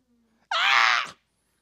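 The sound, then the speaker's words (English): A voice lets out a single loud, high-pitched ecstatic shriek lasting about half a second, bright and strained, imitating a cry of joy, with silence before and after. “The word exalt is, it can also be translated to shriek ecstatically.”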